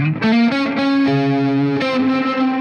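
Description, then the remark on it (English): An electric guitar plays a few sustained, loud chords through an MXR reverb pedal, giving a washy reverb effect, each note ringing and blending into the next, with no one talking. “And then we get this MXR reverb.”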